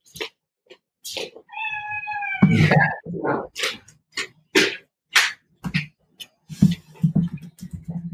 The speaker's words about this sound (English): Sorry, I have a cat in the background.